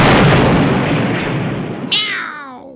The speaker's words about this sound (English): Yes, also they meow.